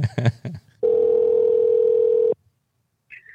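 A single steady electronic ringing tone of an outgoing phone call sounds for about a second and a half, loud and clear, after a few brief noises, then gives way to near silence.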